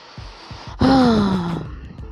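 A single sudden sneeze bursts out after a short quiet lead-in, its sharp explosive onset trailing into a voiced, falling tone that fades over about a second.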